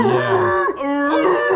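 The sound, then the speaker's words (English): A person's voice lets out a loud, drawn-out wailing scream with a sliding pitch, imitating a whale-like cry, heard on its own, with no talking. “he's going to beat … so bad that …'s going to make his, you know, scream, his whale sound”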